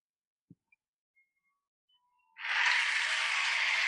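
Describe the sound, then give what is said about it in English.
After a quiet opening with a soft tap and a few faint thin tones, an audience bursts into loud, steady applause that continues to the end without any talking. “I love that. Love the applause.”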